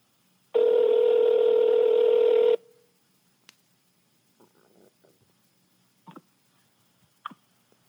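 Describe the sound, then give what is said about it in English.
A loud, steady telephone dial tone on a dropped call drones for about two seconds and cuts off abruptly, followed by faint clicks and small rustling noises. “Maybe if you paid your phone bill once in a while.”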